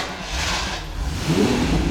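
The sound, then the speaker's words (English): A car engine turns over and revs up, its low rumble growing louder and rougher toward the end, with no voices. “I think we can really leave without turning the key on one of these cars, can we?”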